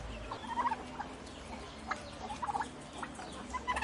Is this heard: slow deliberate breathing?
no